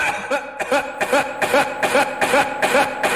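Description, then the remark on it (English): A voice imitates an elderly woman's coughing fit: a rapid, steady run of about nine hoarse, raspy coughs, fairly loud, with no talking in between. “And fucking Gramps just starts coughing.”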